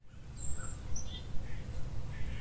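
A northern cardinal sings a few short, high whistled notes against a steady low rumble of background noise, with no voices present.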